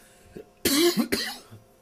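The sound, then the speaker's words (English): Two harsh coughs in quick succession from a person whose cough drop is not working. The first is longer and raspy, the second follows right after, forming a brief coughing fit with a quieter throaty sound at the end. “Yep, the cough drop ain't working.”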